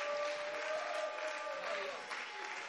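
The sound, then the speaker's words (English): An audience claps steadily at the preacher's call to lift their voices and clap their hands, a dense continuous wash of many hands with no clear individual beats, while voices call out and a sustained tone runs underneath. “I just want you to lift your voice and clap your hands.”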